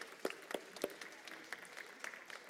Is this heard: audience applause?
yes